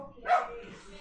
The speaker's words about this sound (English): Ajax has two different barks, by the way, apparently.